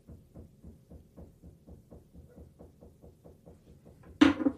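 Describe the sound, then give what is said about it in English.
Steady, fast rhythmic knocking, about four soft hits per second, repeating evenly for several seconds before one louder, sharper bang cuts in at the end. No voices. “Just some rhythmic knocking.”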